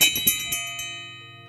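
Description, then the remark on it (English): A meditation bell is rung to open a meditation session, ringing out with a bright, shimmering tone, a few softer taps following the first strike in quick succession, then a sustained hum slowly fading. No voices. “I'm just going to go ahead and ring a bell to connect us with the present moment.”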